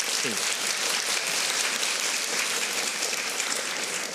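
An audience claps steadily for a few seconds in response to criticism of the first-past-the-post voting system, a dense, even crackle of many hands that stays loud throughout without a clear break.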